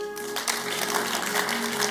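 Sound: audience clapping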